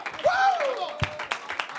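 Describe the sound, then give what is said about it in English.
A church audience claps hands in a steady rhythm, several sharp claps about a third of a second apart, while a voice lets out a rising whoop over the crowd noise as a preacher is welcomed to the pulpit. “Man, while you're clapping your hands, why don't you just lift your voice and love Jesus tonight?”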